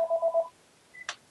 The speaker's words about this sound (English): oh my goodness, I'm getting a call on my home phone.